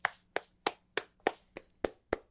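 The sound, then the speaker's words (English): Eight sharp hand claps in a steady, fairly quick rhythm, each a crisp smack with a brief decay, heard alone with no talking, clapping for the return of CM Punk. “I'm clapping too.”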